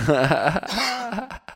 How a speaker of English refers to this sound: I have a bit of a cough in my throat. I wonder if it's from the smoke.